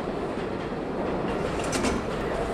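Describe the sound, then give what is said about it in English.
A C subway train at Fulton Street station rumbles steadily along the tracks, a continuous broad roar with a brief high metallic hiss partway through. Fairly loud, with no voices. “And today, as commuters come off the Fulton Street C train, they're greeted with empty shops and dusty aisles.”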